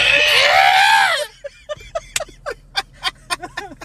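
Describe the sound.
A person imitates the scream a character makes when doing a little flip in Star Wars, a loud, harmonic, wavering cry lasting about a second, followed by quieter bursts of breathy laughter and short vocal sounds.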